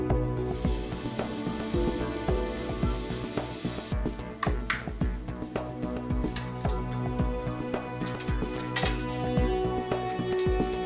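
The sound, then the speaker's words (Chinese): Water runs from a tap, turned on so a colleague downstairs can check where the room is leaking, in a steady, bright hiss for about four seconds, then cuts off, leaving scattered clinks and a faint tonal background with no talking. “我等转头叫你开水你就开水。”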